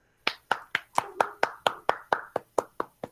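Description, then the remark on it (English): Hand clapping: about a dozen crisp, evenly spaced claps in a quick, steady beat, each one sharp and bright with a short decay, and no voices alongside. “Clap right then.”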